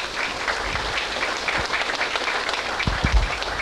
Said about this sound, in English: Big round of applause